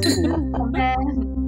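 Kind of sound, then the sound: household object, glasses clinking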